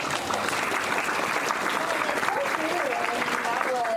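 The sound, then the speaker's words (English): An audience claps steadily, a dense and even wash of applause lasting the whole few seconds, with scattered crowd voices and a few whoops rising through it toward the end. “That's so cool. Clap.”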